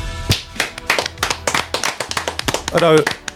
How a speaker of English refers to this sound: Although, I'm not too happy about the clapping.